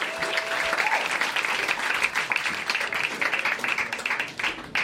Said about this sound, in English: Thanks, guys, for almost clapping until I made it to the stage.